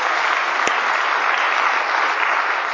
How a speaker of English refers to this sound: Clap for the Lord. Hallelujah.